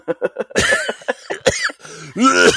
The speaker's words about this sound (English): I've been drinking tea with honey and lemon to keep my cough down, so you need to keep your cough in check.